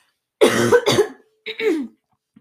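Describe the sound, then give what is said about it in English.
Loud coughing from a person with COVID: a harsh double cough followed after a short pause by two more rougher, throaty coughs, with no talking. “So if you hear me coughing throughout this whole thing, that is why. In fact, I have to right now.”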